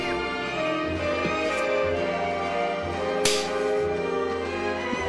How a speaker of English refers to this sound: We are gonna clap at 40 seconds.